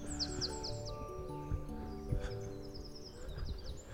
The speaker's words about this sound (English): Everybody's up now. It starts with blackbirds and robins first thing. Oh, there's a song thrush ahead.